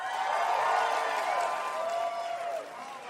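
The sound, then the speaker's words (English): A live audience applauds and cheers for about three seconds, a dense, steady wash of clapping with voices whooping through it before it begins to fade. “If there's a pause before you applaud, I know you're full of shit.”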